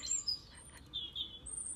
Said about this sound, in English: A little pair of Jenny Wrens. That's a Jenny Wren you can hear singing away.